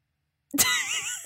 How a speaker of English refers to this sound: So okay, nobody heard me sneeze.